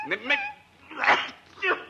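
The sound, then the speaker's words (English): A dog whines in short, high-pitched bursts: two quick whimpers, a breathy snuffling sound, then one more thin whine. “Get rid of that thing. He'll whine all night and keep me awake.”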